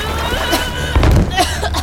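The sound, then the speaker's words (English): A single heavy splash and thump of water lands midway through, set against a steady wash of waves, as someone is pulled up out of the water into a boat at night. “Got to get her from the box to the in the water and then into the boat.”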